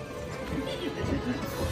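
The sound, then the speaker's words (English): A horse whinnies in a chuckling, laugh-like way, a fairly steady murmur of neighing over about two seconds at moderate loudness with a dense, busy background. “I have a running gag here, which I don't know how often this happens, but we hear horse laughing all the time.”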